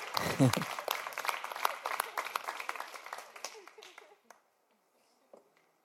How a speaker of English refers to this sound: I don't like this clapping. I know you're writing, but you have to put the pen down, clap, and then continue.